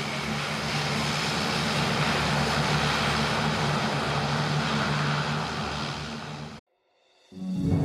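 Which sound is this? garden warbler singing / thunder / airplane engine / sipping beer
airplane engine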